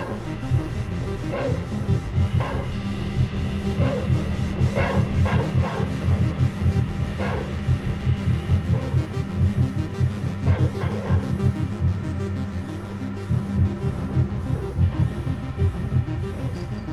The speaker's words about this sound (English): All right, now let's use the sonic pulses on the dog.